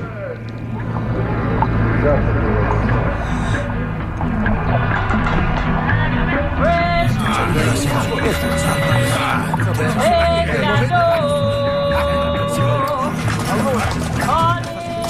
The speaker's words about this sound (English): Right now, this is the 1920s soundscape.